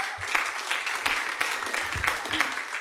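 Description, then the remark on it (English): A crowd applauds steadily for a speaker who has just been introduced, a dense wash of many hands clapping at an even level for the whole stretch, with a faint murmur of voices mixed underneath. “So just give her a round of applause.”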